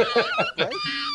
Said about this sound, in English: The fucking dog is getting murdered! Sounds like Michael Vitt's house.